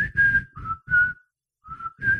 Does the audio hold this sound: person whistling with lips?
yes